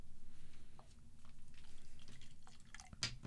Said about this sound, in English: Poured more than I intended to on that one too. Oh no, this I can smell this one from that pour.